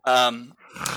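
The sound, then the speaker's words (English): A person imitates a growl: a short vocal growl, a strained voiced burst that drops into a lower, rougher rumble, lasting about a second. “I thought you said growl the first time.”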